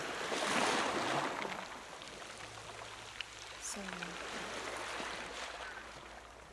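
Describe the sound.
Ocean waves wash in a steady, rushing hiss, swelling louder in the first second before settling into a continuous surf, with a person briefly speaking partway through.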